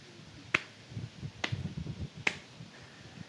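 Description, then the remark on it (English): Three sharp, evenly spaced claps ring out one by one in a slow, deliberate rhythm, with a soft low rumble of background murmur in between. “Hobart steps out from the side, and he does a slow clap.”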